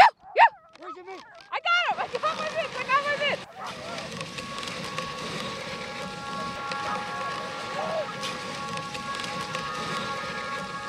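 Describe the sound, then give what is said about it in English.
Sled dogs pulling a komatik sled over ice and snow pant as their paws dig steadily into the snow, a continuous crunching, rustling rhythm that runs unbroken after a brief burst of yelps or voices at the start. “All you can hear are the dogs panting, their paws digging in, the sled moving along on the ice and snow.”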